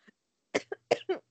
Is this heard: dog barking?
no